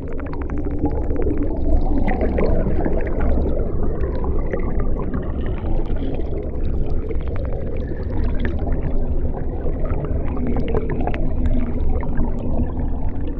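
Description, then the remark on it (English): Dry ice, some ground into a thin powder, fizzing and bubbling underwater, recorded with hydrophones: a dense, steady churning rumble peppered with countless tiny pops and crackles that carries on without pause, with no voices. “So we would just get all this movement from the dry ice creating a lot of air dispersion in the water.”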